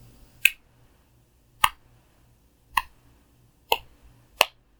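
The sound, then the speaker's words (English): A slow clap: five sharp, crisp hand claps at a steady, unhurried pace, roughly one per second, with quiet in between and no talking. “And then Billow started a slow clap.”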